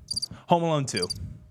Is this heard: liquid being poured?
no